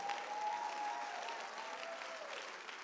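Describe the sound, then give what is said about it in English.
A church audience claps for the Lord during a sermon, a dense wash of applause holding at an even level for a few seconds, with a faint sustained tone running beneath it. “Give the Lord a clap off and I'm preaching.”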